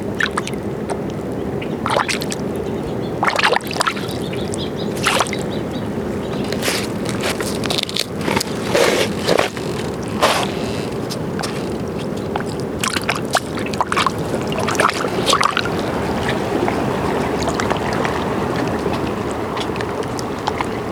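nature, water flowing around objects

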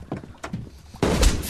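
impact, gunshot

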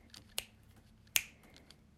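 human body sound, finger snapping

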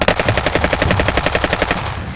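impact, machine gun fire

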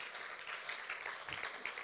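crowd, audience clapping

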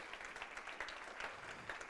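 crowd, audience clapping

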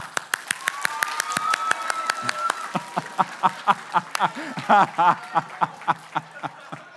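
crowd, group clapping hands

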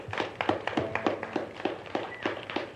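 crowd, audience round of applause

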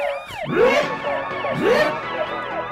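signal or alarm, alarm going off

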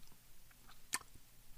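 food or drink, sipping coffee

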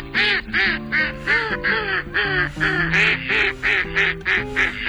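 bird, female mallard duck quacking

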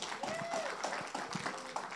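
crowd, audience applauding

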